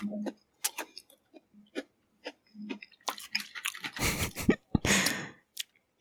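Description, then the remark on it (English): Someone chews a cheap Oreo cookie soaked in water, making irregular wet mouth clicks and soft squelches, with a few louder, broader mushy bursts toward the end and no talking. “Tastes like just a soggy Oreo.”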